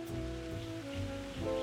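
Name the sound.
rain falling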